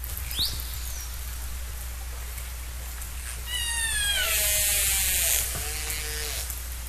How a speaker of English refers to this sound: That was a killer whale.